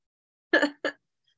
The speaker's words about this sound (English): I'm trying really hard not to cough right now, if you guys can't tell.